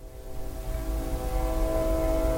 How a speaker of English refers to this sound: Oh, there's a train. Only one toot from the train. Oh, there's another one.